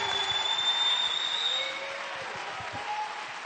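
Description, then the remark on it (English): A church audience claps together in praise to God, a dense, steady wash of applause that eases slightly partway through, with a thin high-pitched tone ringing faintly over the first half. “Somebody clap your hand and give God the praise.”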